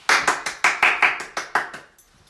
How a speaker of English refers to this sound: Clapping.